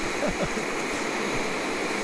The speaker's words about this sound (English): It's an ocean. Yeah. This is the kind of forest that I'm into.